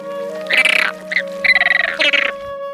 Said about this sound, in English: Flamingos sound like this.